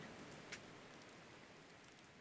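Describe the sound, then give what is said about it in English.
Steady rain hisses evenly throughout, a soft continuous wash of drops with one brief brighter patter near the start. No voices, just the quiet, unbroken downpour. “Welcome back from the rain.”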